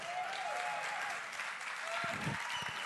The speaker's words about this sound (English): That was like the weakest clap.